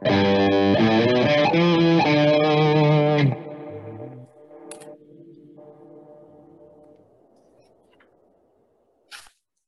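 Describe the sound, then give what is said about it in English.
A loud, heavily distorted electric guitar strums a few fast chords for about three seconds, then lets the final notes ring and fade with echoey effects, ending in a brief faint click. “Can you hear my guitar?”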